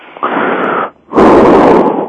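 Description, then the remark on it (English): Loud, deep breathing: one long breath in, a brief pause, then a heavier, rougher breath out, with no talking. “Well, it's exaggerating, but if I'm breathing deeply in and out the whole show, okay, that's what you're going to hear.”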